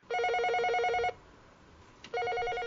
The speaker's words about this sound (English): That sounds like the telephone booth outside my house is ringing.